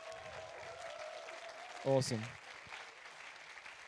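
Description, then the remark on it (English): An audience applauds steadily throughout, a dense crackle of clapping, while a single voice briefly calls out over it partway through; applause welcoming a speaker at a worship gathering. “So we can do a massive round of applause for Josh.”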